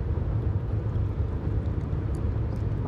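A steady, droning rumble of engine and road noise fills a car cabin while the car is being driven, heavy in the low end and constant throughout with no pauses or voices.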